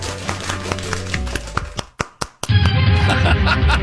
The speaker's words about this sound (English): I love the weird golf clap there.